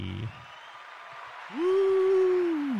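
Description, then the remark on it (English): An applause and cheering sound effect, a steady wash of clapping noise throughout, with a loud, sustained whooping cheer rising over it in the second half. “You should hit the second one on the left. The applause?”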